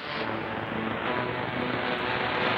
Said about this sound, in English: This is toward the end. It's just like static, but it does have a pitch.